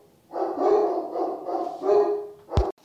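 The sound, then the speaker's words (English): A dog barks and howls in a drawn-out, wavering series of vocalizations, loud, ending with a sharp, abrupt bark. “Dog's hauling off there, but anyways.”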